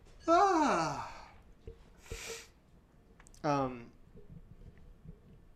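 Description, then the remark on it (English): A long, drawn-out yawn with a falling voiced groan, then a breathy inhale and a shorter second voiced exhale, with no talking. “Sorry, I keep yawning.”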